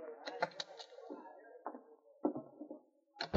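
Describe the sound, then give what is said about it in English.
Sergeant Preston knocking on Dora Kyle's dressing room door: a quick series of sharp knocks, about four raps close together, followed by a few duller thumps and shuffling sounds. “A short time later, Sergeant Preston knocked on Dora Kyle's dressing room.”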